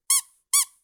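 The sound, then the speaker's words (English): Two quick, bright squeaks from the whistle part of a dog's toy that the dog chewed up and ripped apart. It is squeezed twice about half a second apart, each a short shrill note that fades fast; clear with no voices. “And then I found this, which is just like the whistle part.”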